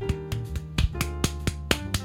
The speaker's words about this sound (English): Sorry, my rings make it so it hurts to clap, but I want to applaud that.